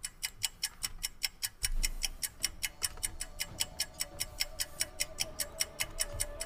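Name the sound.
clock ticking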